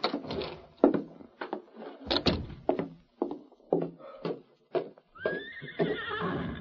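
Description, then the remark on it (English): A series of hollow hoof clops and knocks from a saddled, waiting horse, followed near the end by its loud, wavering whinny that rises and trembles for over a second, with no talking. “There's your horse, all saddled and waiting.”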